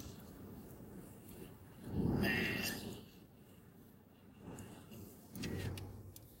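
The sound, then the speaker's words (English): Cars whoosh by in traffic, with two louder passes swelling up and fading away against a steady road rumble. “I thought he was going to clip that car. And that car was going to clip us.”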